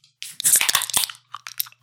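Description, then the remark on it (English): Drink cans being cracked open: a few sharp metallic snaps with a bright fizzing hiss, then some softer clicks and rattles as it quiets down. “Crack 'em if you got 'em.”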